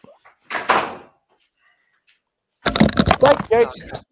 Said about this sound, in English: I just closed the door.